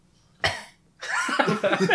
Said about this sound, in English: Don't cough.